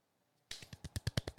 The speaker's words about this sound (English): Do you know why? You know why we're golf clapping right now?